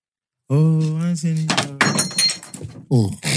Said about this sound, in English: Man's dangerous in the boxing ring. Dangerous in the studio. Man's knocking over books and all sorts.